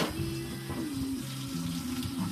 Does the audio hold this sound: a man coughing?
no